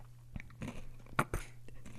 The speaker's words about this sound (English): Stop chewing in the microphone. Seriously, I'm taking this away from you because that's a radio nightmare.